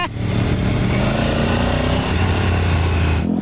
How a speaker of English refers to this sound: And I have a shitty motorcycle for this with street tires. This is great!